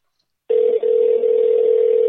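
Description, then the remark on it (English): After a brief silence, a steady electronic ringback tone starts up and holds loud and unbroken, the sound of a phone line ringing on the caller's end with no one answering. “He ain't picking up.”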